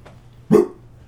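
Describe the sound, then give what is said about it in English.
A single sharp dog bark rings out, short and fairly loud, against quiet background hum with no one talking. “There's a dog in.”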